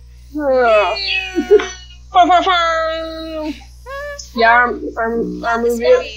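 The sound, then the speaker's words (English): Cats let out a series of strange, eerie cries, drawn-out wavering yowls that rise and bend in pitch, loud, over a steady low hum. “It's almost as if your cats are possessed, kind of like the movie that we're watching, The Conjuring.”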